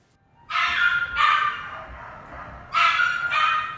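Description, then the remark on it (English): Several caged dogs, including terriers, Great Danes, Alsatians and Bulldogs, bark, whimper and yelp in close succession, with four loud, harmonic bursts and whiny, drawn-out cries between them, recorded close by on a DAT recorder. “He's right there in the foreground where the dogs howl.”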